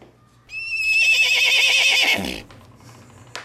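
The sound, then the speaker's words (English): A loud horse whinny lasting nearly two seconds, its high, quavering pitch wavering and descending before fading out, with only faint background hum and no one speaking. “MAGFest will ride to Valhalla on an eight-legged horse called Spike.”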